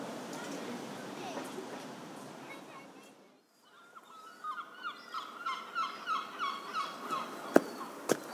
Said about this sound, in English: Well, you can tell we're in a coastal setting with the gulls chirping in the background. Although I don't know if gulls chirp.